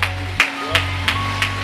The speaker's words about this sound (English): Come on, let's give him another clap on the praise.